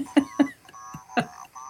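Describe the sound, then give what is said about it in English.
A cuckoo clock calls a few quick two-note hoots, soft, with a faint steady hum lingering in the background and no one talking. “Do you hear the cuckoo clock?”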